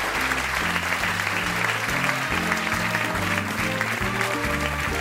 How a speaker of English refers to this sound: And Tony Law, a round of applause. Thank you very much.